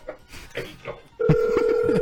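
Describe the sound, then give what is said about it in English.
A voice talks briefly, then a loud, steady electronic telephone tone starts and holds without a break to the end as a call is placed to a pizza place, with more voice sounds faintly underneath. “Pick up the phone.”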